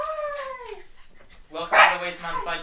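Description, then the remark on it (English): A dog named Chewie gives a drawn-out whining cry that slides downward, then after a short pause lets out a louder burst of barking and yelping vocalizations. “My dog doesn't listen to me.”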